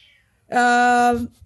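A single loud, drawn-out cat meow lasting under a second, with a clear tonal, nasal quality, standing alone against an otherwise quiet background.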